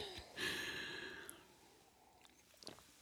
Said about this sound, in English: I'm going to sip on this coffee more. Yeah. You know, I'm going to take a sip too before I get started, if that's okay. Please do.